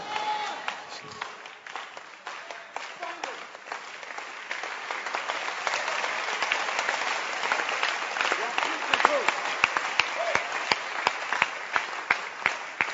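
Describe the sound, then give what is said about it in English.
A church audience claps steadily for the Holy Ghost during a sermon, sharp overlapping hand claps that swell louder midway with a few standout strokes, while voices murmur and call out underneath. “Continue clapping and let's clap for the Holy Ghost.”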